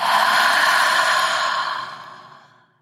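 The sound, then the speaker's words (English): A long, breathy exhale, a steady airy rush that holds for over a second and then tapers off into silence, with no talking; a deep breath in and exhale. “Breathing in deeply and exhale.”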